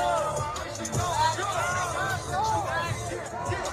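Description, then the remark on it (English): A dense, packed crowd at a music festival in Houston, Texas, people crushed and stuck together, with many overlapping voices shouting and screaming in terror at once, a continuous loud roar of panicked yells rising and falling throughout. “shows people stuck together, terrified, screaming, some sensing what's next.”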